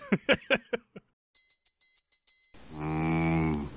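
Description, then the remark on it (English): A goat sound effect: a goat bleats loudly, a quick run of short stuttering cries, a pause filled with light clicking, then one long drawn-out bleat. No one speaks. “A goat? I'm cueing that sound effect now if I already haven't.”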